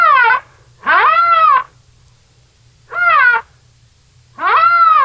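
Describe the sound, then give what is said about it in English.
A rhinoceros gives four loud, high, bird-like squealing calls, each about half a second long with a wavering, bending pitch. The calls are spaced by pauses over a quiet low hum, with no talking. “It almost sounds like a bird, but it's not. It's a rhinoceros.”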